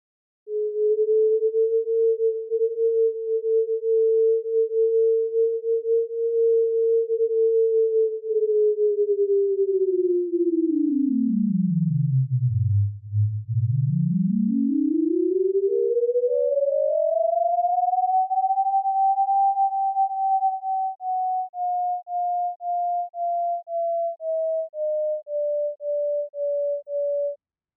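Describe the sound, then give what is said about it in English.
A sonified heartbeat-star light curve over a single heartbeat: a smooth, pure electronic tone holds steady, plunges sharply low, then glides up above its starting pitch and settles, pulsing gently near the end with tidally excited oscillations echoing after perihelion passage. No voices. “All right, so we'll take a listen and try to listen in for all these different features that are in the light curve.”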